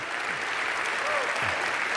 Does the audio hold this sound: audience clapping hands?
yes